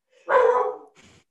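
A single loud dog bark with a strong, sustained body, followed by a shorter, fainter bark or huff a moment later; a protective pet dog at home barking after hearing someone outside the door.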